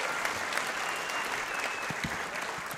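A crowd applauds steadily, a dense wash of clapping that stays loud and even throughout with no pauses or voices.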